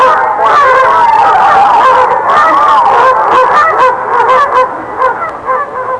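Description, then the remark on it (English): A duck quacks loudly and almost without pause as it flies away, a busy run of nasal, honking calls that carry on for several seconds and ease off slightly toward the end. “Fly away, Duck.”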